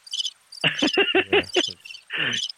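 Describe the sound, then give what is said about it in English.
A cricket chirping sound effect: quick, bright pulses, a steady chorus of repeated trills that fills the moment with no one talking, fairly loud against an otherwise quiet background. “The silence crickets.”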